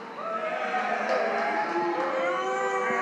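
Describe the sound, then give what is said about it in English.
A large crowd roars when a host asks who thinks Liverpool will win, many voices shouting and whooping together in one loud, sustained swell that holds steady for about three seconds without any clear speech. “Looking into this game, I want to hear a big roar from the crowd.”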